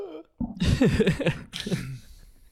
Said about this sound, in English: Shout out, my God, I have the hiccups.